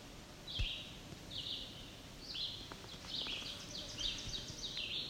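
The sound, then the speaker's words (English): A pair of black-and-white warblers tick at the people there, giving sharp, high ticking calls in irregular, overlapping bursts, fairly faint against a soft outdoor hiss, with no voices. “It appears to be a black and white warbler ticking.”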